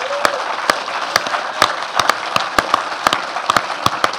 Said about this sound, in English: Before I do, ladies and gents, can we just give the cast a massive round of applause again?